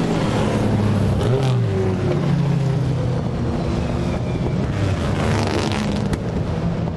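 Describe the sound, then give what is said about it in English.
Sports cars, including an Audi R8 course car, Jaguars and a Dino, rumble past one after another, their engines droning and revving with shifting pitch, loud and continuous throughout with no pauses, the sound swelling as each car passes. “It's the course car, an Audi R8, and some Jags, a Dino.”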